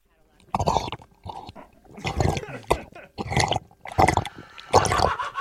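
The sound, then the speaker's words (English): A person drinks water: a series of wet gulps and swallows, roughly seven in quick succession, each a short liquid burst with brief pauses between. “Okay, I need to pause. I'd really like to drink some water.”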